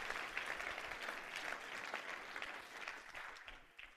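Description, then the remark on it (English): An audience, called on to clap their hands and shout yes, bursts into loud, sustained clapping, a dense wash of many hands that holds steady throughout and tapers slightly at the very end. “Somebody clap your hand and shout, yes!”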